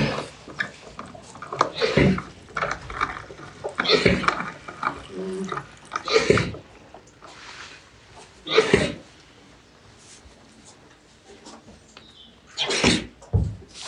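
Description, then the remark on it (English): An alpaca paddling in a trough of freshly filled clean water, sending up a handful of loud, irregular splashes and sloshes with quieter dripping and stirring of the water in between. “I've just filled that clean water up. Now what are you doing? You're paddling around in it.”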